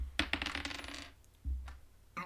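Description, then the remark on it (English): Dice are rolled again for an investigation roll with advantage, clattering and tumbling across a hard tabletop in a quick burst of rattling clicks lasting about a second, followed by a dull low thump and a brief soft rustle; the roll comes out as 16. No one speaks. “I'm rolling again for advantage.”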